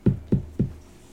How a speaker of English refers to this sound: And he kind of walks up to the door. He looks left. He looks right. You're the only people in the Robin Hood Motel right now. And he knocks on the door.